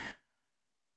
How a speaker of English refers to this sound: Bless you. Thank you.